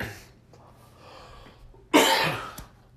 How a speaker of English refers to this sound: it would not be a podcast without me coughing. That's like my signature, I guess. Most people have something much better. I get a cough.